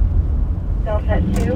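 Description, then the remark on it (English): An EMS emergency vehicle pulls away at speed toward a call involving a bicyclist and a car, its heavy engine rumbling steadily, while a few short siren bursts rise above the noise near the end. “And just like that, casual talk is over, and we speed towards a call involving a bicyclist and a car.”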